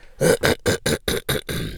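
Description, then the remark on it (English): A rapid fit of harsh coughing from a lingering cough, roughly seven bursts in quick, steady succession, loud with no talking. “I'm still trying to get over this, whatever this cough is.”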